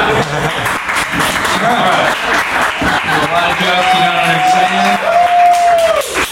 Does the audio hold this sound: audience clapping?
yes